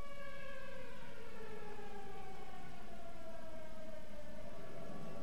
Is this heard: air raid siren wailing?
yes